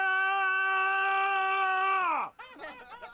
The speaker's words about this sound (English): Right? You had to have heard that. Did you not hear that? It sounded like someone screaming. Oh, you mean the person that's getting worked on? That noise. What is that? Oh, yeah, Dr. is with a patient right now.